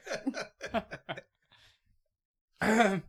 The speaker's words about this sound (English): Nope. Just clearing my throat.